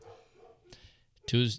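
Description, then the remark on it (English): A dog barks wildly, with faint muffled sounds in the background before one sudden, loud bark bursts out at the end. “Whoa, dude, dog's going wild over there.”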